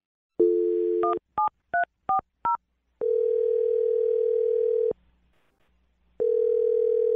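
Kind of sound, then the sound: signal or alarm, telephone number being dialed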